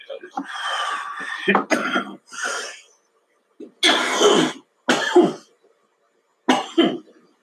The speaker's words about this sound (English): I don't want to hear me coughing.